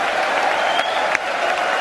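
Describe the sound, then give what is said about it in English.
Sustained applause from a large group of legislators of the 118th Congress after the new Speaker of the House, Kevin McCarthy, is congratulated, a steady dense clatter of many hands clapping at even loudness, with a couple of sharper claps standing out. “One presumes that's the Republican side applauding.”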